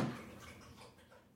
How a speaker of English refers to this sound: She's not snoring. Yeah, she's just thirsty. I want to see how long she'll drink water.